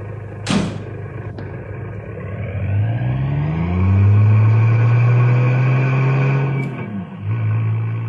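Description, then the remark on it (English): A sharp clunk, then a car engine rumbles up and revs as the car drives away, its pitch climbing steadily over several seconds before easing off, loud with no voices. “Shall I return here with the car?”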